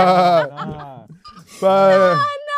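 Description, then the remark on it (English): A person mimics a sheep with two drawn-out, wavering bleats, loud, separated by a short breathy pause of murmured vocal sounds. “And like the way I said it, I sounded like a sheep.”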